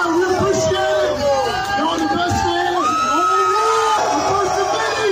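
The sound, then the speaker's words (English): A packed crowd at the Blind Pig bar roars and cheers nonstop after a Bengals win as a game ball is brought in, with overlapping shouts, whoops and rising yells layered into a loud, dense wall of celebration that never lets up. “Can you imagine being at that bar for that moment?”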